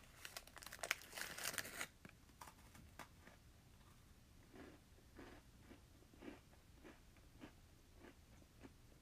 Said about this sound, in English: The sound of chewing is another ASMR trigger.